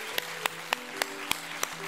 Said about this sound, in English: Now give the Lord a great hand clap of praise. Would you do that?